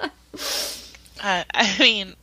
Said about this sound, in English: I don't know if I'm stressed or like what, but I like cannot breathe. Oh. So if I'm breathing into the mic, you guys, that's my bad.